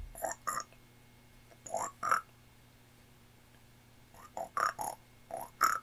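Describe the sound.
A voice mimics frog croaking: short, throaty croaks in small clusters, separated by quiet pauses, at a moderate level.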